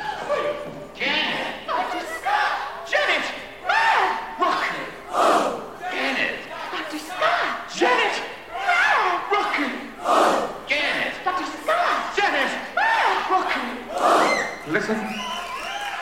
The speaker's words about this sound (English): That round of applause at the end of the bit explains a lot about the thrill of Rocky Horror's interactivity. Members of the audience are congratulating themselves for getting it right.